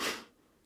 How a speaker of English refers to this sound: I'm not crying, I'm sniffling.